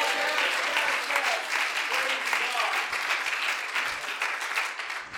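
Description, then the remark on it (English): An audience claps hands unto the Lord in a dense, steady burst of applause lasting several seconds, with a few voices mixed in beneath the crackling wash of hands. “Come on, clap your hands unto the Lord today.”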